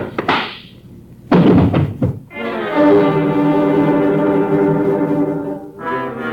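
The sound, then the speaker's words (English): A heavy, blunt blow to the back of the head lands with a loud thud and a quick follow-up impact as a man steps into a hallway, then a long, steady droning tone rings out and briefly returns at the end. “And I am just in time for lowering of the 9 o'clock boom, which descends on the back of my skull as I step into the hallway.”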